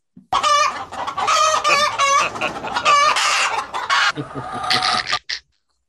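A chicken clucks loudly, a rapid run of agitated squawking calls lasting several seconds with no one talking over it.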